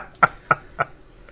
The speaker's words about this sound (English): I can hear that. Are you gassy? No, it's my dog again. She's sitting on my lap snoring, so.